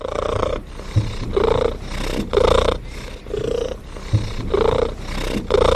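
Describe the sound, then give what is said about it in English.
A pet domestic cat purrs loudly, a steady rumbling that swells and eases with each breath in a slow, regular rhythm, with no other sounds around it. “to study this quite specific sound produced by her pet kitty.”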